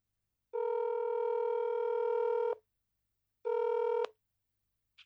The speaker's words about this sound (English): Hold up. Answer your phone.